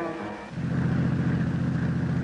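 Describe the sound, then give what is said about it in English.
A heavy truck engine rumbles on the road, its deep droning growl swelling louder after a brief moment as the vehicle approaches and holds a steady roar. “Sam, look out! That truck! Turn the wheel!”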